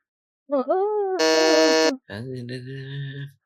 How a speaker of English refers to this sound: you have buzzed in first. What is your answer?